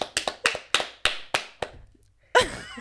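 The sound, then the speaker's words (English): Scattered claps from an audience, about nine sharp, crisp smacks at an uneven pace that fade out after a second and a half, followed by a short, bright burst of sound. “Yeah, clap if you love yourself and bone health, ladies!”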